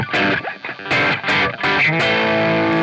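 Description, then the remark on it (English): A heavily overdriven electric guitar, set to overdrive mode with the distortion cranked up, plays a few chunky, saturated chords and short riffs, the gritty distorted tone sustaining loudly with no talking. “Okay, so yeah, overdrive mode. Let's crank up the distortion on it.”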